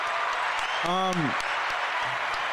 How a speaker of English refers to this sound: Round of applause.